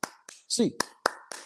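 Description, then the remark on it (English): Sharp hand claps of the UCLA Bruins fans' eight-clap cheer in a quick, uneven rhythm, about five of them, with a short voiced yelp breaking in midway between the claps. “Hands up, Bruins fans. 8 clap time, baby.”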